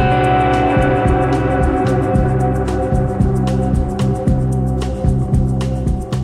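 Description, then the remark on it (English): A loud, steady band plays surf music with a heavily reverberated, twangy electric guitar in the style of early 1960s surf guitar, ringing over a driving drum beat, the notes smearing into a washy echo. No one speaks. “There's a nostalgic quality to their approach in some ways, especially with their use of reverb, replicating the sound of early 1960s surf guitar. In fact, there is lots of reverb.”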